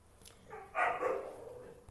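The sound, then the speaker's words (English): A dog lets out two quick, excited yelping barks in close succession, the second drawn out slightly into a whine, moderately loud against a quiet background with no talking. “The dogs, they just getting a little excited.”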